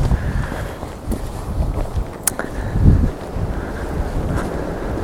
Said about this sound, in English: Right, it's going to be very windy up here, so I do apologise.